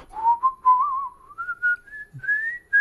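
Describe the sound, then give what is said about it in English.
A man whistles a slow, wandering tune, single pure notes gliding gradually upward in pitch with slight wavers, no talking alongside. “I whistle like a bit of an old man.”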